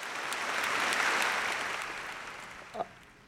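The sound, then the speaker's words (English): Steady crowd applause for the brand Corona, a dense wash of many hands clapping at moderate loudness that gradually thins and fades, with a brief louder spike near the end. No speech. “We got to give them the applause right now.”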